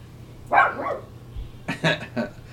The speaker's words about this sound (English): dogs. Gotta love them.